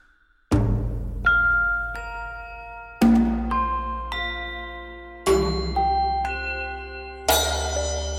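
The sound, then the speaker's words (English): A doorbell chimes through a slow sequence of ringing, bell-like tones, each strike loud and left to ring out and overlap before the next, with no voices. “There's always a doorbell at just the right time.”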